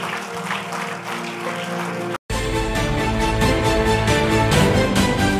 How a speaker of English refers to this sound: Give the Lord a clap offering, somebody. Oh, that clap.